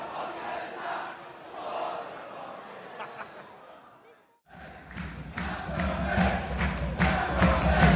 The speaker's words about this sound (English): Belatedly, the crowd... getting up for it.